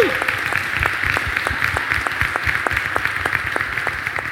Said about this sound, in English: Hey, hold on. Let's all clap for her right now. Congrats.